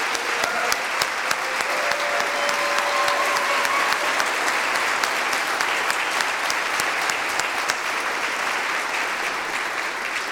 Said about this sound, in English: Thank you again to each of our storytellers for saying yes to bringing your voice into this space. Could we applaud all five of them again one more time?